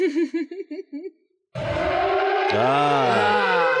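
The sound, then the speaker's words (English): A voice warbles rapidly up and down like a siren, then a louder, noisier stretch follows with slow rising and falling wails over a harsh rushing background. “It'll just be a bunch of sirens.”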